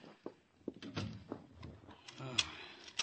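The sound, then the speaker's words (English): A door is shut and bolted, with a series of sharp mechanical clacks and thuds from a latch and lock, fairly loud, spaced irregularly over a few seconds. “The door, bolted, locked.”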